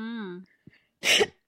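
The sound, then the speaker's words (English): A loud throat clearing: a brief voiced hum, a short pause, then one harsh, raspy burst of air, heard alone without speech. “And to clear my throat.”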